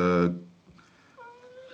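A cat lets out a loud meow, followed by a couple of softer, thinner mews trailing off afterward.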